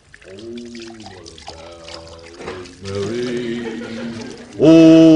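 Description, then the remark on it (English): Water is poured into a glass with ice cubes in several steady bursts, the gurgling pitch shifting as it fills, with a louder splash of liquid at the end. “Brother Andy, ain't you got that glass of water yet? Oh, I haven't trouble with these ice cubes.”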